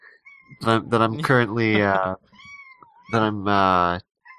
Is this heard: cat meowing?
yes